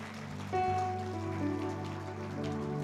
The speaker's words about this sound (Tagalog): Lahat ho na nakakaranas ng constant growth, pumalakpak ng malakas sa Panginoon.